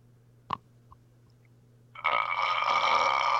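A long, loud, drawn-out burp rumbles in close to the mic and holds steady to the end, preceded by a couple of small clicks in otherwise quiet surroundings.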